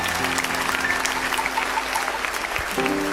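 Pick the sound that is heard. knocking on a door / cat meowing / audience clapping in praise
audience clapping in praise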